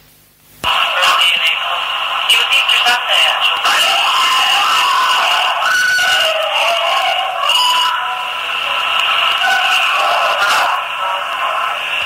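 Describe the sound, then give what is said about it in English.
A recording from Chingle Hall, in which a few guests speak before a long, piercing scream kicks in, plays back through a tinny, band-limited speaker, the scream sustained and harsh for over ten seconds with slight wavering and distortion, loud. “Was that the scream? Yeah.”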